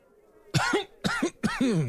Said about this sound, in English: Like, as soon as you said a gold bar, right, he'd been taking another puff and kind of goes into a soft coughing fit and...